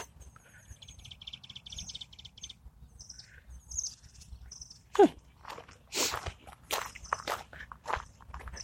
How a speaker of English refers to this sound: Well, if any of you know bird calls, you can tell me what it was.